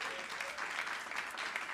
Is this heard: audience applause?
yes